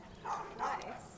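Two quick, fairly faint barks from two giant schnauzer dogs being walked by a woman with a boy in a baby carriage, one bark right after the other, over a low background murmur.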